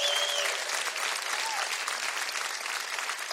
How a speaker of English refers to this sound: Where are my veterans at? We got to do a room check. Where's my Army veterans at? Army, give the Army a round of applause.